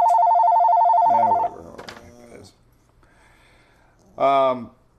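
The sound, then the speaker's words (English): A telephone rings loudly at 9 in the morning in Clearwater, Florida, with a steady electronic tone for about a second and a half, then cuts off as a man starts talking, with another short burst of speech near the end. “Oh, now the phone's ringing.”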